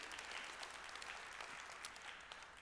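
A crowd applauds steadily, dense overlapping claps forming a continuous wash of sound at moderate volume that holds for a couple of seconds without any talking.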